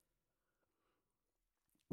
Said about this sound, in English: And as you're listening to this, have some sips. I'm going to do it now. It's probably going to sound horrible on the mic, but I've got mine with me.